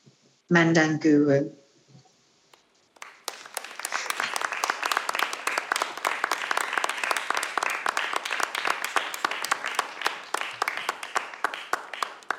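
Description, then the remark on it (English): A brief voice rings out, then after a short pause an audience at an evening event, after honouring country, bursts into steady, dense applause, many hands clapping loudly and continuously for about nine seconds without fading. “Now, I know she can't hear us anymore, but please, one more round of applause”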